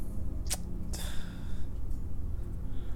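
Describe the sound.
A voice fakes a snore: two quick, breathy snorting bursts, one right after the other, followed by a low steady hum.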